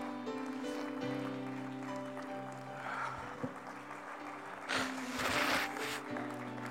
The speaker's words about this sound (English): Come on, stand and give Jesus a hand clap of praise today. Come on.